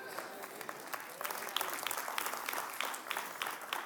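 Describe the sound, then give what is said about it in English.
An audience claps steadily during a sermon about being not guilty through Jesus, a dense patter of many hands that swells slightly after the first second and keeps going, with faint voices mixed into the applause. “It's okay to clap because you're not guilty if you know Jesus.”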